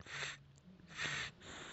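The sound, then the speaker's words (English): Two rough, hissing breaths drawn through a stuffy, congested nose, each lasting under half a second with a faint whistling edge, separated by a short pause; no talking. “This is me breathing through my nose. Can you hear this?”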